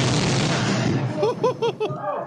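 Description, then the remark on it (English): A single loud explosion-like impact as something crashes into a house in Hawaii between the kitchen and living room: a big boom whose roaring noise fades over about a second, followed by short excited vocal exclamations. “The audio is an explosion, basically.”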